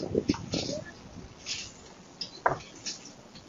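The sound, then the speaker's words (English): Dogs confronting a bear make a few short barks and yelps, scattered irregularly over a thin, slightly noisy background. No one speaks. “But you can hear the dogs.”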